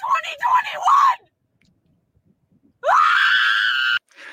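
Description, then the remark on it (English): A woman driving a car screams hysterically after learning of Ruth Bader Ginsburg's death, in two long, shrill bursts separated by a short silence, the first wavering and broken, the second a sustained rising wail, loud. “She's going off her head, screaming hysterically because she's not going to have Ruth Bader Ginsburg on the Supreme Court.”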